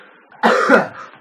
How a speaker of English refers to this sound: A small cough at the end to let out a little bit of smoke.